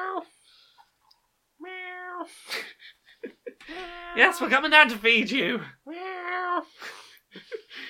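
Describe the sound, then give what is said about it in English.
A cat named Smudge meows insistently several times, loud, demanding breakfast in the morning, its drawn-out cries coming in a steady series while a person speaks briefly between and over them. “You ain't getting back to sleep after this cat.”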